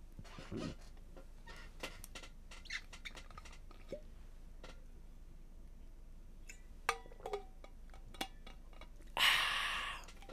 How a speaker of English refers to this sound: Let me just get a sip of water.